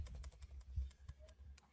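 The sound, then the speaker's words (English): Quick, light keystrokes clatter on a computer keyboard as a password is typed to log back into a wallet, a dozen or so clicks in an uneven rhythm, fairly quiet, with no one speaking. “let me go ahead and just go to the wallet, log out real quick. And then let's go back in.”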